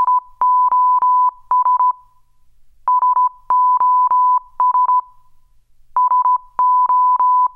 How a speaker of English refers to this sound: Owing to a workplace accident, Dennis is no longer able to use email or write letters and has had to use Morse code instead.